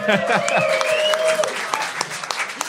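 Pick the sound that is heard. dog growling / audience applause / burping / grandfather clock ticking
audience applause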